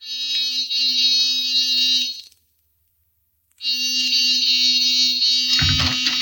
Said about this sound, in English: Give the buzzer a punch.